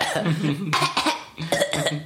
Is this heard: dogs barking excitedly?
no